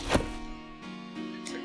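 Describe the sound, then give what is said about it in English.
A single heavy, loud thud of a body, shot in the heart, hitting the ground, followed by sustained low tones with a few soft re-strikes fading out. “So with that, Welby gets shot in the heart, and he falls to the ground with a thud.”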